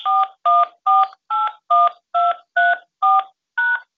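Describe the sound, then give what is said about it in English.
A rapid series of nine telephone keypad DTMF tones, evenly spaced beeps of two pitches each, as someone dials an access code to join a conference call using a backup number. Clear, with no talking. “Access code or phone number you have dialed is incorrect.”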